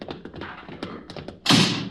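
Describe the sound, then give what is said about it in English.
A door is handled with a series of soft thuds and taps, followed by a sudden louder, broad rushing burst near the end as it swings and shuts. “She'll open the door.”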